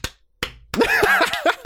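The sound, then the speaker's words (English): A lone person in an auditorium claps slowly, three sharp separate claps with pauses between them, and then a voice starts up and carries on over the last few claps. “Just one person clapping in the entire auditorium.”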